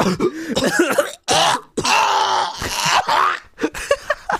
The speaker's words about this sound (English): Don't you ever fucking cough while I'm talking.